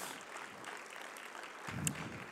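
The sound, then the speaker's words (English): A church audience claps together in a steady, dense patter of applause for visiting pastors, fairly soft throughout, with no voices. “Give them a round of applause and give us a wave, guys.”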